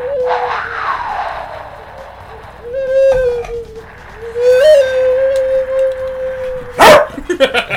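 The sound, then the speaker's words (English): A dog, Brody, barking into a loudspeaker, vocalizes with drawn-out, whining tones and then lets out one sharp, loud bark near the end. No one speaks. “Brody hates that. He hates it.”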